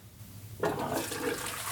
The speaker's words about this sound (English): Flush it. So what? Nothing really to say about that. Just a simple talking to camera and a little flush sound effect.